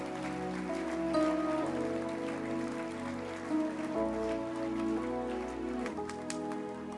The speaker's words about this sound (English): Well, tonight we continue to enjoy some good music. I think you should clap your hands for the instrumentalist tonight.